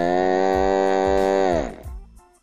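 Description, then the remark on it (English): A long, loud cow moo holds steady for over a second, then slides downward and fades, with a regular thumping beat pulsing underneath. “That's a damn cow.”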